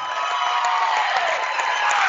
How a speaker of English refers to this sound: Fouling out of the ball game here is Tanner Thompson, and Thompson's going to get a nice round of applause from the Amherst faithful.